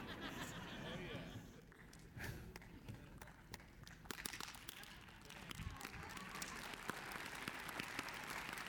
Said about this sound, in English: Come on, Steve Harvey, applause. What's that?